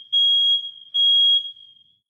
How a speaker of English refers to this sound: Okay, no joke. I can't plan those things. Our fire alarm just went off while we're recording these podcasts.